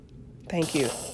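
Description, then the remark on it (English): A toddler blows her nose: a sudden, hissy rush of air with a couple of short, voiced honking snorts, loud and lasting under a second after a quiet start. “she just learned how to blow her nose, you guys.”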